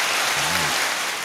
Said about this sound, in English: I can do my own applause. It's all right. It's all right. I got a mixer too. I could do my own applause. Listen.